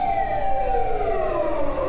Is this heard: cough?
no